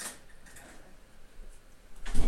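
A door shuts with a soft thud near the end, after a brief clatter at the start and a quiet stretch of room noise in between.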